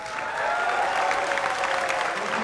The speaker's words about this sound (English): Let's get some applause because...